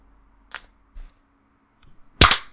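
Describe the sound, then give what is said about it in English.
Every knuckle in a hand being cracked: a sharp pop, a couple of faint clicks, then a louder, crisper snap near the end, with no talking in between. “Sorry, it's me cracking every knuckle in my hand.”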